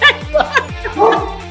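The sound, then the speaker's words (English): A dog barks several times in quick succession, short sharp yips and woofs, over a steady low hum in the background. “But now my dog's here to hear your dog.”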